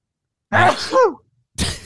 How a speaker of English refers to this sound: God. Sorry, I had to do a little quick puke there.